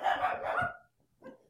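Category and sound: animal, dogs barking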